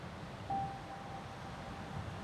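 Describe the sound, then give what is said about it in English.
A steady, hissing wash of ocean waves rolls on without pause, with a brief thin whistle-like tone rising out of it early on. No voices are heard. “It's a story full of pirates, a princess, a king of the caves, and the constant backdrop of the relaxing sound of the ocean.”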